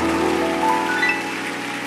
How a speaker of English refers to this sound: Give Jesus a mighty hand clap offering. God bless you.